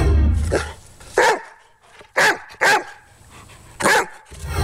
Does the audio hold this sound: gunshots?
no